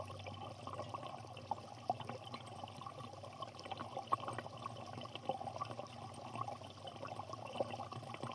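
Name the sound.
water lapping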